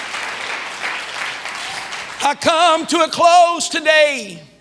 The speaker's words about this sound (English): Come on, jump to your feet and clap your hands and shout, God's got his eye on me. Come on, God's got his eye on me.